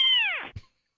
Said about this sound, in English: Is that a cat?